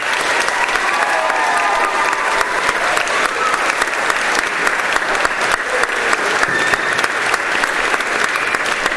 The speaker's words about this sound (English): We do need to thank all the staff who've been run ragged to make this place look so beautiful. Children, we're going to give them a big clap. We hope you'll all join us.